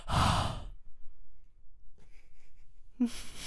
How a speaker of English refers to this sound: I wonder, is my breathing super bad when I'm this close?